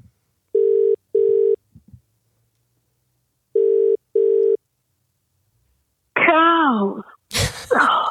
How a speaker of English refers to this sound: I reckon we should bring up that phone and let's give Jano a ring